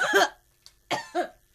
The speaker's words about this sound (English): The coughing continues. It doesn't sound good at all.